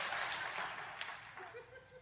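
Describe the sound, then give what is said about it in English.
A crowd claps steadily for about two seconds, a dense wash of many hands at moderate volume, with faint chuckles and voices mixed in near the end. “Hey, give the brother a hand clap for just surviving, right?”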